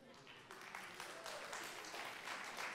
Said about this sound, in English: Round of applause if you're typically a late person.